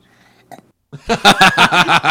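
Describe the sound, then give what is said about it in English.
A boy lets out a long, loud belch at the end, right after doing the cymbal, rumbling and pulsing for about a second after a brief faint click and near silence. “Well, then he belches at the end.”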